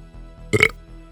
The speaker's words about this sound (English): That was a good burp. Strong belch game.